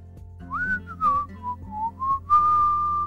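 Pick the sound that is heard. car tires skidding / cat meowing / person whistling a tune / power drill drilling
person whistling a tune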